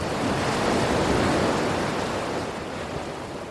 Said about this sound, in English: The water rushes forward and gathers around our legs and like comes up to my thighs and your shins. Yeah, your calves.